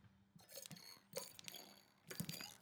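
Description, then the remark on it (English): Cold water sloshes inside a plastic bottle in three quick shaking bursts, each a short run of splashy, crackly rattling with brief pauses between. The sound is fairly soft, and no one speaks. “Bottle of water, there, the cap is off. Give it a little shake and let's try.”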